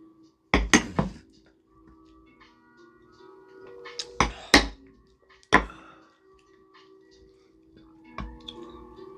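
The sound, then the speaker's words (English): Glasses clink together in a toast before shots: a quick double clink, a pair of louder ones a few seconds later, another single clink, then a faint last tap, with quiet hum between. “Take one shot. Cheers, boys. Cheers. Cheers.”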